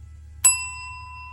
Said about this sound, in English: The bell tolled and all attention turned to the center of the room.